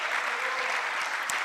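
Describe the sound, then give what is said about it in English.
An audience claps together in a dense, steady wash of applause, many hands at once, loud and continuous with no voices standing out. “Somebody clap your hands because we're going to win the prize.”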